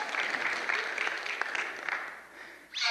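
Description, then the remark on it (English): An audience applauding steadily for the film Harriet, about Harriet Tubman, a dense wash of many hands clapping that carries on throughout, with a brief swell of brighter noise near the end. “If you've seen it, you can go ahead and applaud.”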